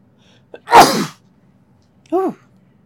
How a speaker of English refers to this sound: I'm going to sneeze, hold on.